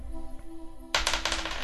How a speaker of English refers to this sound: And I want you to give me one dice roll and just tell me what the number is.